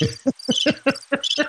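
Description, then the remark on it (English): A crickets chirping sound effect: a quick, steady series of about seven evenly spaced pulses, loud, with no voices present. “Where's the crickets?”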